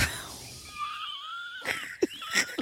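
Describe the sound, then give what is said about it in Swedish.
A person imitates a horse whinny with a high, quavering, wavering cry lasting about a second, followed by a few short breathy bursts like snorts or laughter, moderately loud. “Du är ju hästar.”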